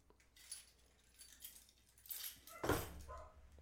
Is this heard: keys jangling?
yes